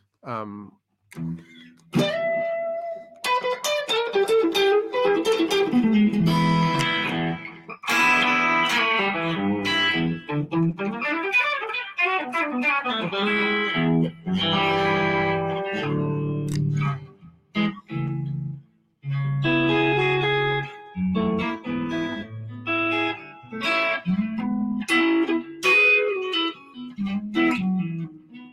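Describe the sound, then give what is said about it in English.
An electric guitar, a Stratocaster with a maple neck and alder body, plays alone, mixing picked melodic runs with ringing chords, its bright tone lightly colored by effects and sustaining steadily for nearly half a minute. “And this is still, you know, one of my favorite Strats.”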